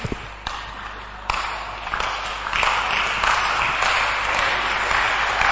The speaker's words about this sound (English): You are clapping for the word of God, not for me. Clap it well. For the word of God.